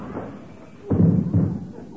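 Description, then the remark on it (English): A man crashes into a closed front door: a loud, low, booming thud followed half a second later by a second, slightly weaker thump, with a brief rattling rumble fading after. “Gee, he should have asked me if the front door was open. Oh, well, it is now.”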